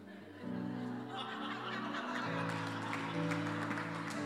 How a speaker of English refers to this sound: That wasn't a clapping moment, just by the way.